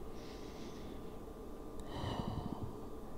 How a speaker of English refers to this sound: Don't be too hard on yourself. Just normal breathing.